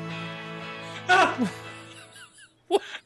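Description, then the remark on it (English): An anguished, wavering scream from the movie character Anakin rises and breaks over a low, sustained drone, followed by quieter moans and a short final cry near the end. “Anakin screaming. I love that.”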